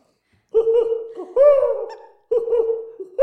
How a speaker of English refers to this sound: Okay. Ooh, that was a peppy owl.